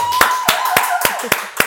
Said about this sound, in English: I've said to you, I believe you need to be executive producing your own show, owning your own show, and now you have one. Yeah. So we're going to clap it up for that really quick.